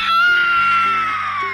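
A loud, shrill monster-like scream, like a harpy's cry, held steady for over a second and slowly sliding down in pitch, with a low droning tone underneath and no talking.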